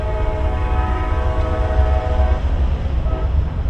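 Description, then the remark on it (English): The wheels of a passenger train with lounge, sleeping and dining cars roll along the track in a steady, loud rumble, with a sustained tonal whine layered over the first part, and no one speaking. “While you're sitting there being served, the wheels will keep on rolling. They'll roll all through the night.”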